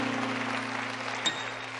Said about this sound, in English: Let's give our choir hand clap. Come on. Praise the Lord.